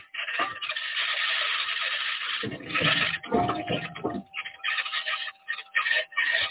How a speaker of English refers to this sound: All those interesting noises are rocks that the wheels, the aluminum wheels, are encountering. The chassis noises, springs and actuators and suspension as it's driving.